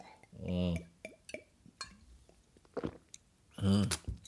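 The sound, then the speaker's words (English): Sips and swallows of water with faint glass clinks and wet mouth clicks, framed by two short voiced gulps or satisfied hums near the start and end. “But yeah, let me have a sip of this water, baby.”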